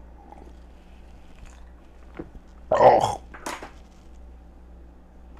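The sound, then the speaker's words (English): A wet gulp of someone swallowing a handful of nighttime nootropic pills (Huperzine A, sunflower lecithin, 5-HTP, New Mood and vitamin C), followed by a brief vocal exclamation, with faint mouth and handling noises around it. “I just swallowed a fucking handful of pills.”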